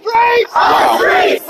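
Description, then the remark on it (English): A large protest crowd that has grown to about three times its earlier size chants loudly in unison, three rhythmic shouted phrases in quick succession, with cheering voices blending into a dense, energetic roar. “This crowd is like tripled from when we started.”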